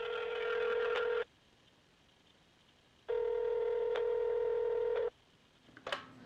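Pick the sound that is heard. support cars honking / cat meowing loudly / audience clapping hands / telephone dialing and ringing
telephone dialing and ringing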